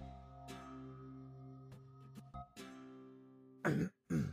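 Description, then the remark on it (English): A frail-looking man in a Hawaiian shirt coughs wetly several times, a few short, softer coughs followed by two loud, heavy coughs at the end, with no talking. “He coughed wetly for a few moments before continuing.”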